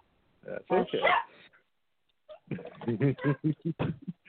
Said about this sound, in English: Sorry, my dogs are going bananas.